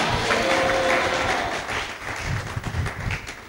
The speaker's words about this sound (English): If you are blessed today, shout hallelujah. Thank you for clapping. Shout hallelujah.